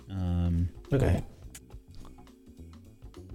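A quick run of light, clicky keystrokes on a computer keyboard, tapping unevenly for a couple of seconds after a brief droning tone and a short burst of noise.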